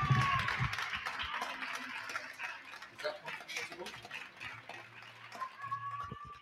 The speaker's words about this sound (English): because as it happens, as we're talking now, the Spanish people are actually clapping. So I'm just going to see if I can get it on the mic.